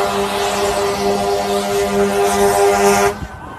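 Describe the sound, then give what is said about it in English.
Car horns honk repeatedly in long, overlapping blasts over a steady roar of street traffic, loud, then cut off abruptly near the end; drivers honking in support of teachers walking along both sides of the Albert Street Bridge in minus 40 windchill. “And yesterday, with minus 40 windshield, the teachers took over both sides of the Albert Street Bridge, and they were walking along with honking support.”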